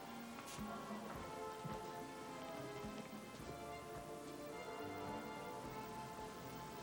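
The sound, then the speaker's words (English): Steady rain pattering on a hard surface, a dense continuous hiss of drops with occasional sharper splashes, fairly quiet and even throughout, with no voices. “Real rain?”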